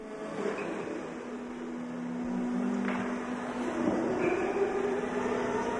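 A forklift truck runs steadily in a spirit store warehouse in Middleton holding casks: a continuous mechanical engine drone with a constant low hum, a few brief whining swells and rattles, and no voices.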